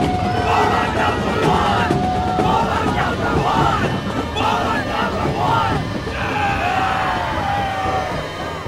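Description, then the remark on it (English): A large crowd gathering at night murmurs and chatters continuously, a dense hubbub of overlapping voices with occasional louder calls rising out of the babble, steady and fairly loud throughout. “Let's go to camera two and show everyone the crowd gathering here tonight.”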